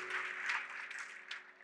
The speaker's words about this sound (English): Now put your hands together and give the Lord a hand clap of praise as you take your seat.